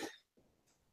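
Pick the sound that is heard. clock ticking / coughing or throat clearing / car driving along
coughing or throat clearing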